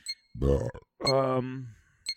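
Two deep, croaky burps in quick succession, the second longer and drawn out, loud and close up, with faint clicks before and after.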